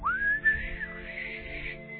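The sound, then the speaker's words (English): A breathy, airy attempt at whistling by someone with a dry mouth: a thin tone briefly rises and wavers, then dissolves into a hissing puff of air for about two seconds, fairly quiet, with no talking. “Imagine a man with no lips trying to whistle.”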